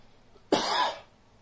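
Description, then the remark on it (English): A single loud cough bursts out abruptly and lingers briefly with a rough, breathy tail before fading into quiet. “Got a cough?”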